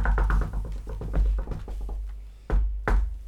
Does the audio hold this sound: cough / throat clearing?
no